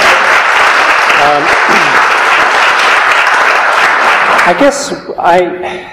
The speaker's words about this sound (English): I guess we'll applaud them for a second.